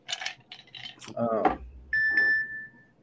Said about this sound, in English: That's special effects in the background in this episode. Ding, ding. Ding ding.